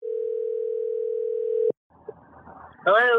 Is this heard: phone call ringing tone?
yes